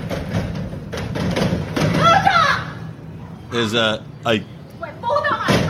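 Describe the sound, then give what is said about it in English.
An angry woman kicks and bangs on a front door: several heavy, irregular thuds, while raised, agitated voices shout in between and over the impacts. “She's mad. She's kicking the door.”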